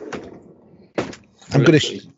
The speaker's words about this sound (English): I've opened my drawer because... is that the man drawer?